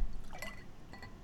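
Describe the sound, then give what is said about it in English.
A short, soft pour of beer into a glass, with faint gurgling and splashing, heard on its own without any talking. “Hey, I'm gonna attempt to do a pour.”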